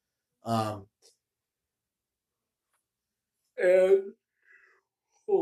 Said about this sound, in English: I'm yawning. I'm so tired.